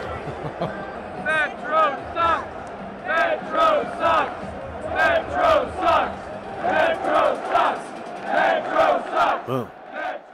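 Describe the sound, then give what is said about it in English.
A large stadium crowd of fans at a game chants angrily in unison, "Metro sucks!", a loud, rhythmic repeated phrase rising and falling in steady bursts over a constant roar of many voices, reacting to an announcement that the last Metro train was about to leave. “First, let's listen to how the fans reacted during the game to the announcement that the last train was about to leave.”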